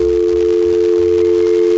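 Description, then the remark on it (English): A steady telephone dial tone hums without a break, loud, with no voices or other sounds alongside it, as a call is placed during the War of the Roses segment on radio station B95. “We are getting Teddy on the phone right now.”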